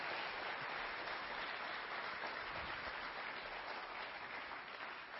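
Sustained crowd applause, a dense, steady wash of many hands clapping at even loudness for about five seconds, with no voices over it.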